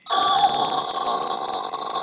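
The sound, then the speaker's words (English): A hallway door that could use a little oil creaks open with a long, loud, strained squeal that holds steady for about two seconds, its dry hinge grinding out a high, harsh tone. No one speaks over it. “Oh, wow, this door is different. Could use a little oil”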